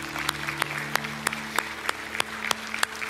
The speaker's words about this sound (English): Let's give God a round of applause, can't we?